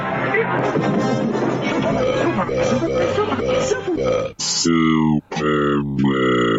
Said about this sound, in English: Super burp. What? That was a super burp.